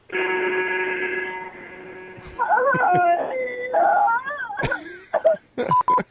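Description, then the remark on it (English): A feeble truck horn gives one steady, flat, buzzer-like blare lasting about two seconds, followed by wavering, swooping vocal sounds and brief bursts of noise. “That sounds more like a buzzer. I was just about to say it sounds like a wrong buzzer, doesn't it?”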